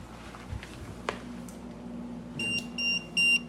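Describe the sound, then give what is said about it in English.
A quiet low hum, then three short high-pitched electronic beeps from an EMF meter in quick succession near the end, clear, with brief gaps between them. “The one thing we didn't do before we started was get a baseline on our phones with the EMF.”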